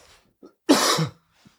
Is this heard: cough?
yes